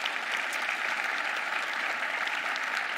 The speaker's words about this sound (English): Give them another hand of applause real quick.